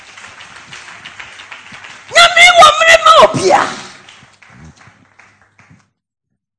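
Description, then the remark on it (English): A loud burst of audience clapping mixed with raised, shouting voices lasts about a second and a half, cutting into a speaker's talk before fading back to speech. “I thought you would clap unto the Lord.”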